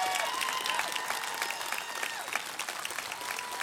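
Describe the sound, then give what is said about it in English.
A crowd claps steadily for medical professionals from Parkland Hospital. The dense, continuous applause of many overlapping hand claps forms a bright, crackling wash that holds at an even loudness throughout. “and give them all a big old round of applause.”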